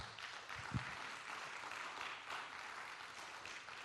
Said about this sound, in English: So, yeah, you can give the Lord a good round of applause.